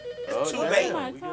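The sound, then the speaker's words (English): A telephone rings with a warbling electronic tone over a second or so, loud, with voices audible alongside it. “Then they make the phone ring this time of day.”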